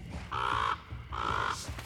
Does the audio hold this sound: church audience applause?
no